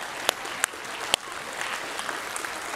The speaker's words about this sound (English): Excellent. Absolutely excellent. Can you give her a round of applause?